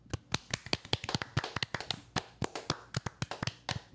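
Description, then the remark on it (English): A small group claps for about four seconds, sharp, uneven hand claps overlapping in a loose, irregular rhythm at moderate volume, with no talking. “We need a clap.”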